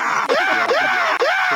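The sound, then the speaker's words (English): A man's screaming sound effect played from a soundboard button: three loud, strained cries in quick succession, each sweeping upward in pitch, with no talking over them. “Here, push the bungle drums, and there's a screaming man.”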